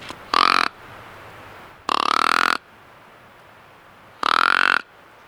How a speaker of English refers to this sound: Here's a deer grunt tube.